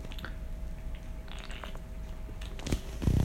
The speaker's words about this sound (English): And going back to, it's late at night, and I need another sip.